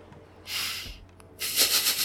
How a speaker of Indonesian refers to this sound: Jadi lu cuma tarik nafas dari hidung, kayak tarik nafas, terus keluar dari mulut pelan-pelan.